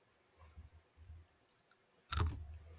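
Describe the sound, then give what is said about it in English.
Chewing of a crunchy peanut: a couple of soft, muffled chomps, then one sharp, loud crunch that breaks through clearly before fading into quieter chewing. “I just heard one distinct crunch. It was like a stereotypical. That was the peanut.”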